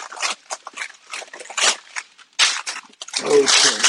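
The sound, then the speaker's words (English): Crinkly, papery rustling and tearing of parchment paper being pulled from a roll to line a 9x13 cake pan, in several short noisy bursts, ending in a longer, denser stretch of crackling. “Okay, parchment paper is off.”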